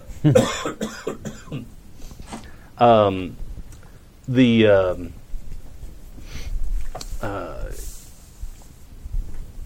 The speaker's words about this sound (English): excuse me, I didn't even get time to reach for the cough button.